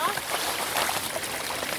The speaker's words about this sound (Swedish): Oh shit, vilken härlig liten bäckfåra.